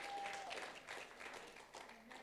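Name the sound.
audience applauding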